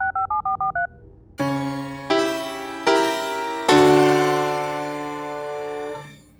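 phone dialing touch tones

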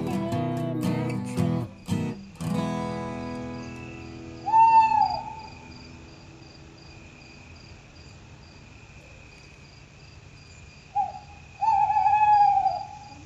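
owl hooting

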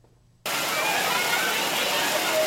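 people splashing

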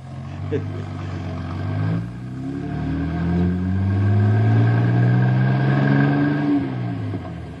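buses approaching

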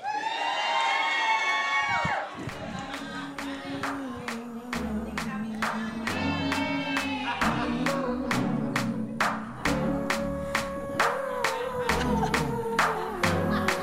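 audience cheering and applauding

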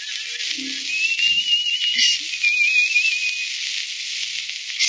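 person whistling a tune

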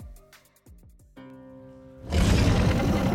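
dragon roar

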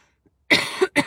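coughing

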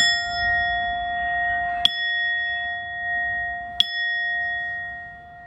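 chime ringing

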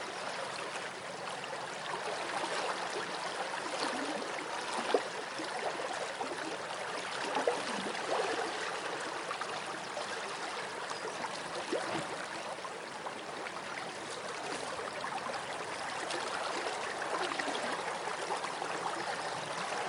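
flowing river water

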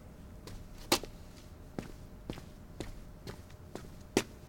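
footsteps walking

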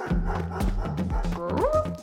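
dog barking

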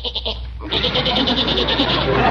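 goat bleating

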